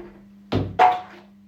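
Two quick splashes of water as someone jumps into a swimming pool, one right after the other, the second a little louder and trailing off, set over a low steady hum.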